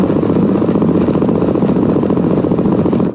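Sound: black-capped chickadee heartbeat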